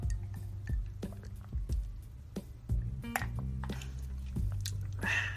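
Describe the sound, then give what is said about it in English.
Quiet sips of water with small wet clicks and gulps scattered across a few seconds, over a low steady hum; no one speaks. “I'm drinking water, which is unprofessional, but we live how we live.”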